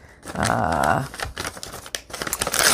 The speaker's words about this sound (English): I'll just tear some paper here. This is coffee dyed paper.